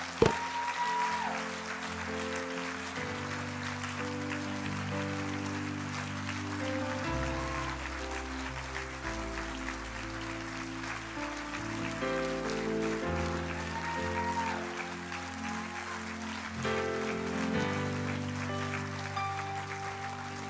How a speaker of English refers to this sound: If you lifted your hand, come to the front and give them a big clap. Come on. If you lifted your hand, come to the front, but come with energy. Give them a clap as they come.